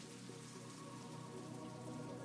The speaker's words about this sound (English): But if we look at raindrops falling on a pond, that's a pattern we can understand. We know what's happening.